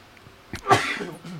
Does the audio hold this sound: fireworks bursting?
no